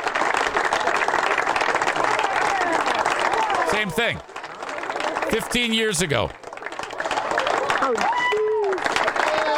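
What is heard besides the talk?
sports crowd cheering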